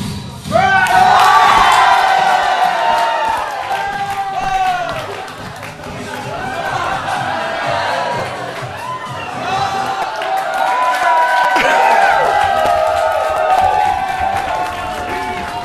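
A loud crowd at a Sunday-night Eurovision party cheering and booing, including booing for the UK, with overlapping shouts, whoops and chatter that swell and dip but never stop over about fifteen seconds.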